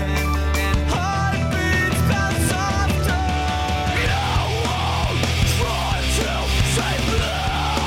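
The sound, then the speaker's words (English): Loud, dense rock music with a harsh screamed vocal running through it, the voice wavering and straining over heavy bass and pounding drums, steady and full from start to finish. “Much better scream than the basement one to not wake your parents.”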